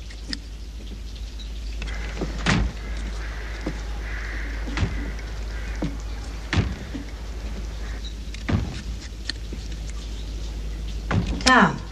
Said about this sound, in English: The table door's not shut. I locked it. Well, it's open now.